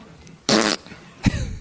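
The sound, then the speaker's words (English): Two loud armpit fart noises, made with an arm pressed under the armpit: a sputtering burst lasting about a quarter second, a short pause, then a second shorter squelchy blast. No talking. “The only thing we needed more of was Mike Gundy to do the whole, remember, put your arm underneath your armpit and make the fart noise.”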